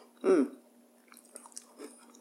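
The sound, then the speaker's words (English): Chewing of a crispy oat chocolate chip cookie, chewy with a little crispy oats: one loud crunchy bite at the start, followed by a series of softer, scattered crackly chews with no talking. “I'm chewing, sorry. It's nice and chewy. The oats are not mushy at all. They're a little bit crispy.”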